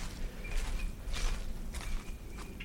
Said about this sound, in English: Not sure what that bird singing is, it's always intriguing to hear something a bit new.